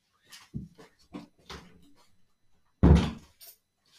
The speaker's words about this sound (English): me closing the door in my own house